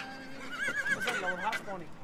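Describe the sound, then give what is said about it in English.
A horse whinnies in a long, wavering, high-pitched neigh, with a few sharp hoof clip-clops sounding briefly beneath it, moderately loud, as herds of horses are driven down the quays of Irish ports to be loaded onto ships. “Herds of horses were driven down the quays of Irish ports to be loaded on board ships.”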